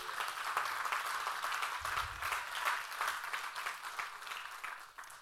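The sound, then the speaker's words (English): An audience applauds steadily for the Lord Jesus Christ, many hands clapping in a dense, continuous patter that holds at an even loudness for several seconds, with no voices standing out. “I like hand claps, but I like hand claps for him more.”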